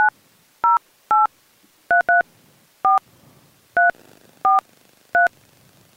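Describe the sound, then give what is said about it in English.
Telephone keypad tones beep out a phone number, about ten short two-pitched presses in an uneven rhythm, some in quick pairs, loud with quiet gaps between them. “the only person whose number I remember is Chris's”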